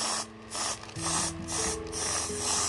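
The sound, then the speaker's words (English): Repeated bursts of hissing aerosol spray as alcoholic whipped cream is pushed from a can onto an ice cream cone, several pulsing sprays, with a faint low hum underneath and no talking. “And talking, since we're speaking on such a, you know, a horrific subject, I am actually going to, and I'm going to turn on the light here to grace the presence, and spray some alcohol whipped cream on my ice cream cone.”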